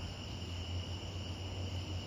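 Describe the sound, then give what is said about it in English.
A steady, continuous chorus of crickets chirping at night in a backyard, a soft high-pitched trill droning on without pause over a faint low hum, with no one speaking. “The crickets are singing.”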